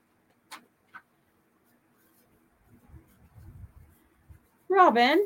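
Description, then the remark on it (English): A couple of light, crisp taps are followed by a soft, muffled rustle of a sheet of paper being flipped over. A person then starts speaking. “Hold on, I got to flip my paper again.”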